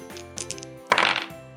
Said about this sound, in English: Dad, that's dice, not a drum.